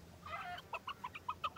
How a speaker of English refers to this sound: The chicken was lost and calling to his mother. "Mother," he cried. Mother Hen, I want to get home and go to sleep under your wings.